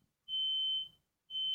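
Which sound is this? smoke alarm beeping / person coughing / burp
smoke alarm beeping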